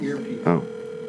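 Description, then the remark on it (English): A steady electronic telephone ringing tone hums continuously at moderate volume, heard over a phone line as a call is placed, with a brief burst of a man's voice cutting in midway. “We're gonna call up Tommy Wiseau. He's not going to pick up.”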